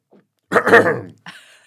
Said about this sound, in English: That gulp was like audible.